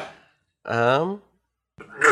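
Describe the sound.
A single sneeze: a breathy intake, a drawn-out voiced "ah" that wavers in pitch, then after a short pause a sharp, hissy burst, fairly loud.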